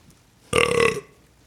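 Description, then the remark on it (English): A man lets out a single loud, throaty burp lasting about half a second, rich and resonant with a slightly rattling texture, with no talking around it. “This man's multi-timber ability to burp out a panoply of various digestive juices.”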